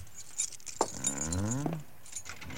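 Light metallic jingling and clicking of keys, found in a desk, being handled and fumbled while tried in a locked door, with a brief rising, groaning creak in the middle before the rattling settles.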